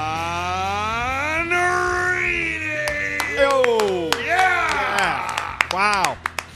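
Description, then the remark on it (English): Two people clap their hands in the 104.3 The Fan radio studio in Denver, in sharp, uneven bursts, the claps growing more frequent toward the end, over wavering, sliding wordless vocal tones that rise and fall throughout. “What's the sound of four hands clapping? It's that, baby.”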